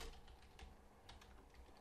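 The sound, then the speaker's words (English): Soft, quick keystrokes on a computer keyboard, a brief irregular run of light clicks with no one talking, as someone types in a term. “I typed in hot dim and did not come up with anything.”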